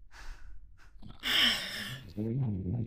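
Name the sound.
voice imitating snoring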